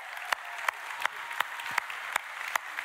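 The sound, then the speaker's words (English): A crowd applauds military veterans on Veterans Day weekend in a steady wash of clapping, with sharp louder claps standing out at a regular, even beat throughout. “Would you all cheer them on and say thank you?”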